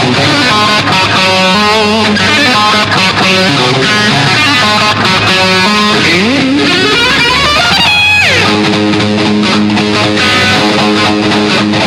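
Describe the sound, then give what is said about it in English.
A loud, heavily distorted electric guitar, an isolated track without production or reverb, chugs through a driving rhythm riff with natural and pinched harmonics, with a whammy-bar dive bomb midway before the riffing resumes, no voices present. “Now that's the rhythm playing that you've heard so much about.”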